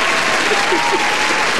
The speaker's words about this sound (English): There you go. There's some applause for you, sir.